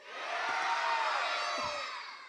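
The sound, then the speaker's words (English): A crowd of many voices yells "get out" together on the count of three, as loud as they can, in one sustained, loud shout, rising quickly and holding for about two seconds before fading slightly at the end. “On the count of three, we gotta yell, get out.”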